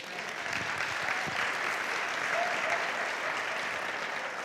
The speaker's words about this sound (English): Give him a hand clap.